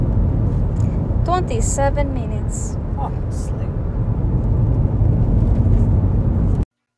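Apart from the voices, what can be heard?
car interior road rumble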